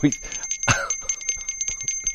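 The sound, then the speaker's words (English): A hand bell rings rapidly and continuously, bright, its steady metallic tone pulsing with each shake, while a voice briefly cuts in underneath. “That's where you go to Salvation Army so you can register to ring bells.”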